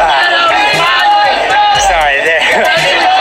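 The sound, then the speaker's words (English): A large crowd gathered outside a place where ballots are being counted fills the scene with loud, continuous chatter, many overlapping voices talking and calling out at once, steady throughout. “But you've got this pretty large crowd right here in front of”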